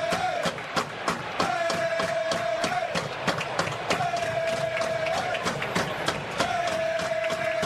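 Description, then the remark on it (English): Baseball players chant in the dugout as Adam Eaton makes his way through it after his two-run homer put them up 10-2 against the Astros in the eighth inning, a steady held note repeating in four long phrases over a busy din of crowd noise, sharp claps and clattering knocks. “Yeah, they had a funny team celebration last night after they went up 10-2 against the Astros in the eighth after Adam Eaton, his two-run homer, they were chanting as he made his way through the dugout.”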